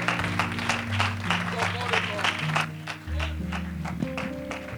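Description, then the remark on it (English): A church audience at a worship service claps together in a steady, rhythmic beat, clapping their hands once more after welcoming a preacher back to the Bendale pulpit, the sharp claps ringing out over sustained low organ or keyboard tones and a murmur of voices. “I wonder, could we clap our hands one more time?”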